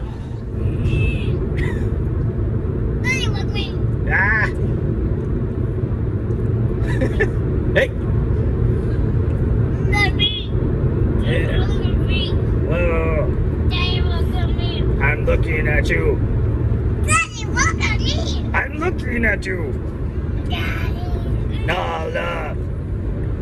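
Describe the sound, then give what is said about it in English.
Steady, loud low road rumble inside a moving car fills the whole recording, with a young child's excited voice and brief higher chirps breaking in over the constant drone. “So the whole car ride, Daddy, look at me.”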